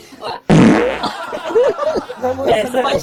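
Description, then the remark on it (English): A loud, raspy fart bursts out abruptly after a moment of quiet, lasting about half a second, followed by voices talking and laughing. “Then skill is farting.”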